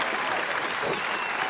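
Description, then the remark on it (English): A steady burst of applause for last week's review, many hands clapping at once in a dense, even crackle that holds at a constant level without any talking over it. “Hey, man, round of applause, man.”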